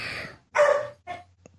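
A dog barks a few times in short, uneven bursts, moderately loud, with brief pauses between them and no talking.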